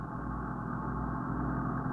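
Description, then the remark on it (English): A steady, low engine of a police patrol car drones continuously and evenly as it drives south on Lexington Avenue in the 70s at 2:55, with few cars on the street. No voices or other sounds break through. “At 2:55, we were driving south on Lexington Avenue in the 70s.”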